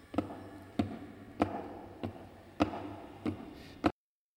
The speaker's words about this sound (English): Boxes shaped like coffins. And I know what they hold. The boxes are filled with holy earth from the chapel beneath the castle. The last box is being nailed down.